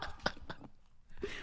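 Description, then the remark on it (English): Loud, crunchy chewing of one big bite in a few sharp bursts, a short pause, then another rough crackling stretch ending in a louder crunch. No one speaks. “I want the ASMR crunch.”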